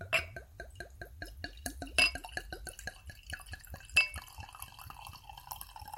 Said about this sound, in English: And I have a real proper wine glass here with me. Fucking fancy, isn't it? It smells nice. I'm going to tip myself out a little splash of wine into this wine glass.